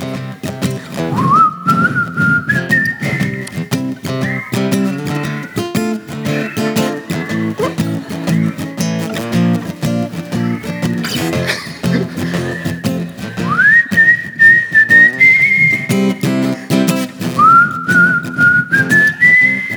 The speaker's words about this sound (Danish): Vi prøver lige at fløjte der. Så vil jeg gerne have, I prøver at fløjte med.